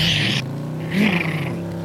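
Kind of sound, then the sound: vehicle, motorcycle engine revving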